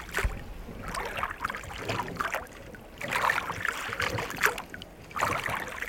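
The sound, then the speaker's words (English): Water gurgles and laps against a small boat drifting untethered from shore in a river current, a steady wash of sound with soft, irregular splashes and no voices. “consider just taking a couple moments to yourself once the boat kind of is floating and is untethered from shore and we're actually in the current.”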